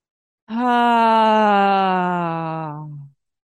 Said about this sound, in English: Breathing in through your imaginary straw, through the mouth, and breathing out with sound through the mouth.